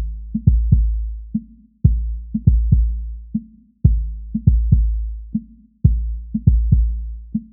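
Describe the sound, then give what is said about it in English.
A drum part played without a noise gate: deep, booming drum hits in a steady repeating groove, each ringing out with a sustained low tail between strokes, with the snares and hi-hats still audible as fainter bleed. No talking. “As promised, let's listen to how it sounds without the gate now. You'll notice the snares and hi-hats are still audible without the gate.”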